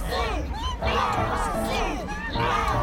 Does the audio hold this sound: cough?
no